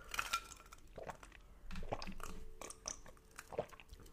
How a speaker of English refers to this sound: It's like a concentrate. So I just put that and then a little bit of oat milk, and it's delicious. I'm just gonna take a sip.